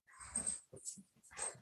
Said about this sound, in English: I stayed Thursday, Friday, and then I hear a little dog.